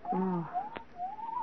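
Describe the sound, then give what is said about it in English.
An owl outside the house hoots once, low and wavering, followed by thinner, higher drawn-out calls, with no one speaking. “That was an owl outside the house.”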